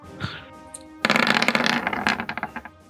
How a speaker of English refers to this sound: Ooh, five on the dice.